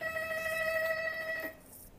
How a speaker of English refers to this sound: And so you kind of, sorry, that was my bell.